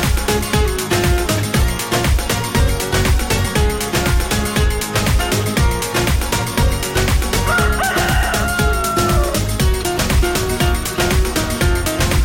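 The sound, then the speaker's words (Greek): A rooster crows once over steady, loud music with a driving beat; the crow rises and falls briefly in the middle of the track rather than standing alone. “μετράμε κοκόρια.”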